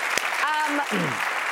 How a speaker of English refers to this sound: Clap for each other. Absolutely. We're all very encouraging.